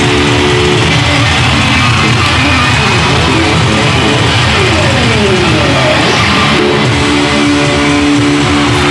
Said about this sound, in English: The house lights are going down. Uh-oh. It's pitch black right now in this stadium. Except for the lighters. The crowd is going wild.